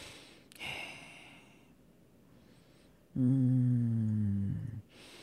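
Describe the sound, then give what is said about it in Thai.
A voice imitates heavy breathing heard on a phone line during about a minute of silence, loud: a quick breathy intake, a quiet pause, then a long, strained, voiced exhale that wavers in pitch before cutting off. “ไอ้หนุ่มบอกเงียบไปประมาณนาทีนึง เงียบไปประมาณ1นาที 1นาทีแต่ยังได้ยินเสียงหายใจแต่มันนานนะเหี้ยแม่งนานมากแต่ยังได้ยินเสียงหายใจแบบว่า”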